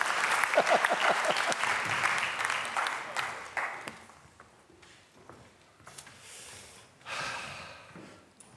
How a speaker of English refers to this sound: Would you please stand and let's have the band up. There was one clap there. Any more claps? Thank you. Thank you. Bring it on. Bring it on.